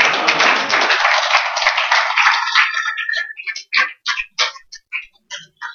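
A crowd applauds loudly in a dense burst of clapping, which thins after a few seconds into a handful of separate, sharp claps that trail off one by one.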